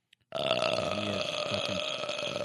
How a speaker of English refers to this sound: Burp.